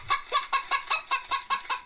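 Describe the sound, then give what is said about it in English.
A chicken clucking sound effect: a quick, steady series of about eight short, bright clucks over two seconds, clear with no other sounds. “You don't have to stop because I'm playing a chicken sound effect.”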